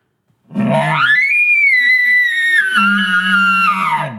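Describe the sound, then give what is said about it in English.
A person blowing a reed elk call, voicing while pushing air over the reed, imitates a mature bull's bugle: one loud, high whistling note rises and holds for about three seconds over a raspy, low growl, then drops away. “Then I'm pushing air over a reed while doing that at the same time to get that more challenge or that growl or that more mature bull, deeper sound.”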